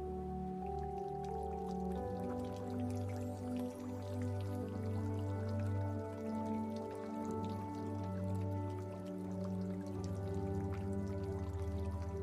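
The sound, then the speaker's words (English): Steady rippling of running water from a clear river, faint and in the distance, blended with a sustained low tonal drone, continuous and even throughout with no voices. “Notice a faint sound of running water in the distance.”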